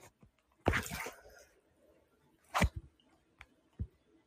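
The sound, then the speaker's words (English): Bath water splashes and sloshes in a few uneven bursts as someone finishes a bath, a longer swish followed by shorter splashes and drips, with quiet pauses between and no talking. “You guys can hear this water. I'm going to finish off my bath.”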